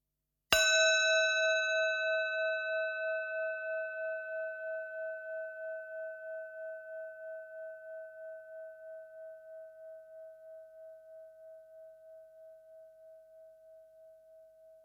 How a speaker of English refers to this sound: So I'm going to ring the bell, and our session of mindfulness will begin.